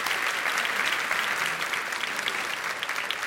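Steady, sustained applause from an audience, a dense wash of many hands clapping at an even loudness throughout, with no voices standing out above it.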